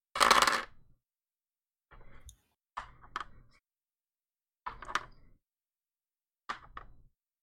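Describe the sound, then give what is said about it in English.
Four dice clatter onto a hard table in several separate rolls: a loud rattling burst first, then four shorter tumbling clicks spaced a second or so apart, with no voices. “Okay, I'm gonna need 1, 2, 3, 4 dice.”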